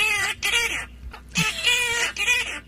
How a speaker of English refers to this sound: Let's talk about two parrots that sing a song that got stuck in my head from this show,